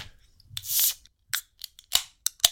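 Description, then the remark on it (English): A can of Aloha, a guava passion fruit sour from Deep Creek Brewing Company, cracks open with a bright, fizzing hiss of escaping gas, followed by several sharp metallic clicks and snaps, fairly loud, with no one talking. “Let's crack open and we can cheers and have a sip and then you can bloody tell me.”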